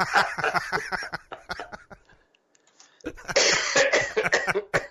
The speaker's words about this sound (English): You're making me cough.